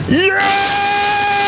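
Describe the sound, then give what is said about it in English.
A person lets out a loud, excited scream, the pitch sweeping sharply upward and then holding as a long, piercing sustained cry. “I do remember that I may have shattered some eardrums by screaming, yes!”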